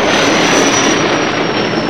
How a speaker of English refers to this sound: Meanwhile, the Millennium Falcon comes out of hyperspace near the coordinates where Alderaan once existed. But Solo and the others are in for a shock.